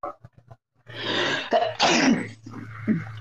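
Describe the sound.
A voice imitates a sneeze: a few short breathy catches, then a long, loud, hissy burst that peaks sharply before trailing off into a rougher, throaty tail.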